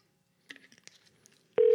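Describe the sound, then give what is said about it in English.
A rapid string of touch-tone keypad beeps is heard as a call is placed to Edible Arrangements, followed abruptly by a loud, steady telephone tone that continues to the end. No voices are present. “We call edible arrangements to see if they”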